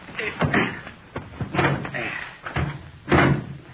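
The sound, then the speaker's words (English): A car door is unlatched and swung, then slammed shut, with several solid thuds and clunks over a few seconds and faint shuffling between them. “Well, somebody open the door.”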